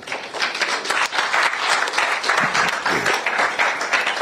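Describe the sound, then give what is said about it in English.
An audience at the launch event of the National Science and Maths Quiz applauds steadily, many overlapping hand claps forming a dense, continuous patter at a fairly loud level, with a few faint voices underneath. “Where are the rest of you? Clap.”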